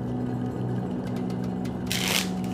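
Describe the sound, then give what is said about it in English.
A deck of playing cards, used as an oracle for prompts in a game, is shuffled: a few light ticking flicks, then a quick, crisp riffle burst near the end, over a steady low electrical hum. “Okay. Let's give that one more shuffle.”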